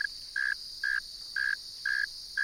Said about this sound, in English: This is a northern mole cricket, a robust, inch-long burrowing species with enlarged front legs equipped with sharp claws adapted for digging. The male is singing from its burrow entrance.